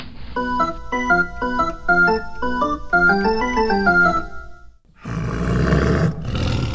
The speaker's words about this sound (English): You really can't keep that tiger in the crime lab, you know. I know. And I'd let him roam the mansion, but it isn't safe for the baby. You think? I'm having a special enclosure built for him at the zoo.